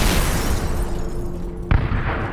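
Loud explosive boom bursting out of a steady, roaring rumble, a sharp blast followed by lingering low rumbling. One of two explosions at Kalajengi on the evening of 24 November, thought to be suicide bombers blowing themselves up. No voices.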